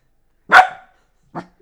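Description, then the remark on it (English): A dog, trained to bark when the word "Rob" is said, barks twice: a loud, sharp bark followed after a pause by a shorter, quieter one. There is silence around them and no one talks. “I went and got a dog to prove it.”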